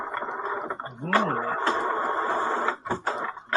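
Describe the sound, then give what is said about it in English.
A loud tractor-feed dot matrix printer prints: a dense, continuous buzzing rasp with rising and falling whirs of the moving print head, broken briefly near the end. “That is a noise. Remarkably loud printer.”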